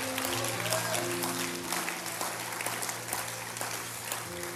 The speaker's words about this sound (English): Oh, let's all stand together right now and clap our hands unto our God who does miracles, who does the supernatural, who performs the miraculous.